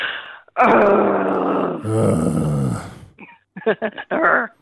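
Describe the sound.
A person imitates a cute little growl as a group greeting: a long, raspy, rumbling vocal growl lasting a couple of seconds, followed by a few short, breathy grunting bursts.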